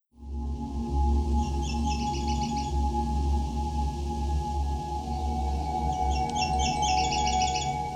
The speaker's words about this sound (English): The Nashville Warbler is a small, energetic songbird. It is found mostly in the eastern boreal forests, with a small population residing near the west coast of North America. Some use the mnemonic CBIT CBIT CBIT CCCCC to describe its song.